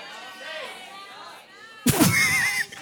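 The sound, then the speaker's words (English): An audience suddenly yells out the names of the five senses together, a loud jumble of overlapping voices bursting in after a moment of quieter talking and lasting about a second. “Yell them out if you know the five senses.”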